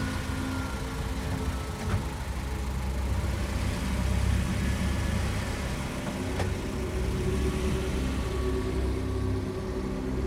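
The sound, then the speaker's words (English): A car engine rumbles steadily, a low, continuous drone with a couple of faint clicks, as the vehicle sets off and pulls away from a farmhouse. “The old man nodded to him, but said nothing, only watching as the car pulled away.”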